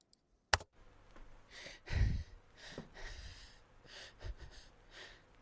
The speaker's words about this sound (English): Quiet, scared breathing began as the song started. It continued through the whole intro up to where the singing was supposed to start, then past it for a few bars.